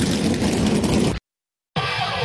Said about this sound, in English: And now, join us in saying, for all of Wilkes County and the entire world to hear, drivers, start your engines! Engines come to life. 16 cars, 16 drivers.